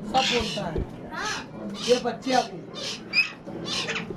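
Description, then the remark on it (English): Myna birds and parrots call repeatedly in an attic flat in South Delhi, India, a string of harsh, chattering squawks arriving every half second or so, loud and overlapping. “What are these? Minor birds. Oh, and these are parrots.”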